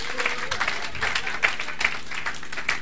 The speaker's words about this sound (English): So, you know what, you can sit down now. Let's give a round of applause for the handsome Joseph and the beautiful Potiphar's wife.